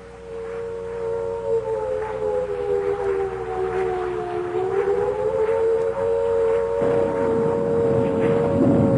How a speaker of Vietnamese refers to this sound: Tôi chợt nghe lẫn trong tiếng mưa gió tiếng gì đầu tiên nghe như tiếng sáo diều, rồi mỗi lúc một to dần, để cuối cùng thành tiếng còi hụ báo động.